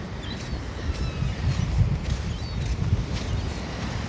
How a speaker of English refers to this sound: Seagulls here have this part of the beach to themselves today.